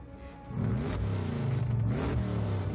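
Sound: car engines revving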